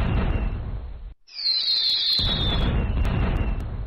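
Fireworks going off outside: a loud, rumbling burst, a brief pause, then a high whistle gliding slightly downward, followed by more sustained crackling booms. No one speaks.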